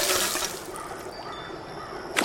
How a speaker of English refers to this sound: Oh, we can collect some water out of this thing.